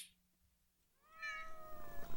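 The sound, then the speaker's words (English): A single drawn-out cat meow, rising then gliding down in pitch, loud, from a cat chasing a beam of light, starting after a brief quiet stretch with a faint low hum. “The cat seems to be chasing the beam.”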